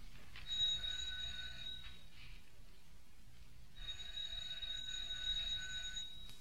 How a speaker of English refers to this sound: It's a walk-up apartment. There goes the dog, heading for that first door. And that's where he probably lives. Ring the doorbell,